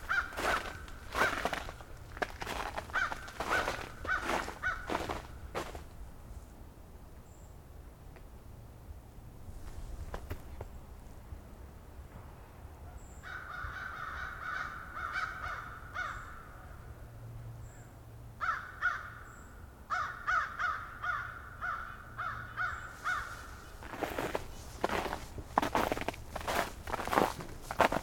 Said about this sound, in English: An American crow behind me.